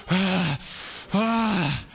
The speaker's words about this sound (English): And then right, number two is something always like some kind of breathing type thing, like, oh, breathe deeply.